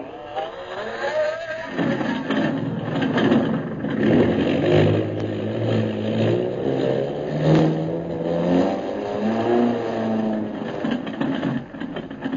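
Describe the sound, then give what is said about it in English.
The engines of a repaired airplane start up and rev as it prepares to take off for Mandalay, building into a loud, steady droning roar with rising and falling pitch that fills the whole recording. “Turn the motors over, pilot.”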